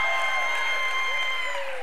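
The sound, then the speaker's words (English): An audience cheers and yells to God in a loud, sustained roar, with high shouting voices piercing through a dense, continuous wash of crowd noise that holds steady throughout. “can we, for 2023, though, can we just give God like the most wild cheer and yelling and just go ecstatic right now?”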